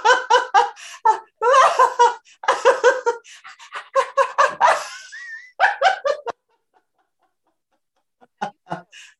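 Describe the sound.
Several people bark and yip like dogs while breaking into bursts of laughter as a laughter exercise, a lively rhythmic stretch of vocal imitation, then a pause followed by a couple of brief final yelps.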